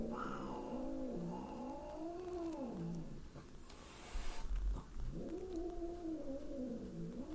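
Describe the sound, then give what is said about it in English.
An angry cat growls and yowls in long, drawn-out wails whose pitch rises and falls, two sustained cries split by a short rough, noisy burst, loud and with no talking. “it'll just sound like I'm being mauled by an angry cat for the rest of the episode”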